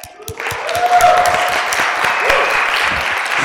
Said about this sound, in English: I'm going to request that you guys clap now.